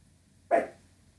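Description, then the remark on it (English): A single sharp dog bark rings out against a quiet background, with a short tail fading away afterward and no one speaking; the dog, woken from a nap, is spooked by hearing its owner typing on a work computer keyboard. “My dogs, I've just woken up from a nap because they heard me typing on the keyboard to my work computer, and that has spooked them.”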